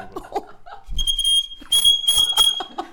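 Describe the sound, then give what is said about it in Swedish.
An air-powered horn, just unwrapped as a present, gives a shrill, steady high-pitched toot twice, a short blast and then a longer one, with a harsh electronic tone like a fire alarm. Brief murmuring and a soft thump come before it. “Det låter lite som ett brandlarm.”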